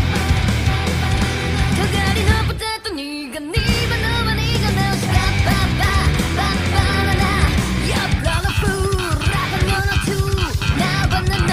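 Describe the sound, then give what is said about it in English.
Loud, dense band music driven by a punchy, popping slap bass line that runs throughout, with a brief break early on where a high yelled vocal cuts in. “Slap bass going on.”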